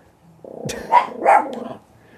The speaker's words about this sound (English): The dogs are barking at something. It's clear the pets have hijacked the show.